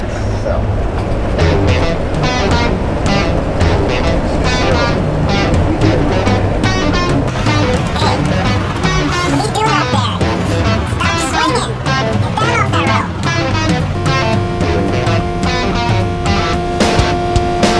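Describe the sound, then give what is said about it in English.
A coffee grinder on a rock and roll band's tour bus runs loudly and continuously, a harsh steady grinding roar with a whining tone toward the end, while voices talk over it. “No, that's a grinder coming in.”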